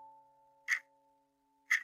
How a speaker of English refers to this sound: I heard a very loud ticking of a clock, which I thought was coming from the room to my left, which I presumed was the living room. On entering, though, the sound seemed to be coming from outside the room.